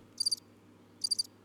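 Crickets chirp in two short bursts of rapid, high-pitched trills about a second apart, clear over a low, steady background hum.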